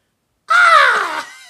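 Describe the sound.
A person imitates a crow with one loud, harsh, drawn-out caw that falls slightly in pitch, coming abruptly after a brief silence and trailing off at the end.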